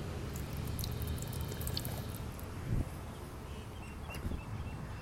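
Water from an outdoor drinking fountain (bubbler) near the MCG runs in a soft, steady trickle as a person takes a mouthful of water, with a brief splash near the middle and faint bird or insect sounds in the background.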